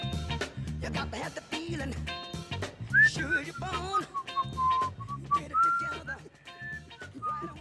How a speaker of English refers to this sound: Why are you whistling, man? What are you whistling about? What are you whistling about?